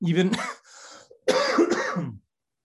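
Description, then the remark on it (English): A man coughs in two rough, throaty bursts separated by a short breathy pause, the second bout longer and fairly loud before it cuts to silence. “facial expressions when he's about to cough is like, I'm so sorry, man.”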